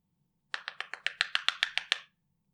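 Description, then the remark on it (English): A quick, steady run of about eleven knocks on a hard surface, evenly spaced over a second and a half, then silence. No one speaks. “And then it's just like, oh, I need something to knock on. Hold on.”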